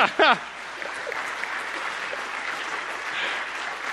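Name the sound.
audience clapping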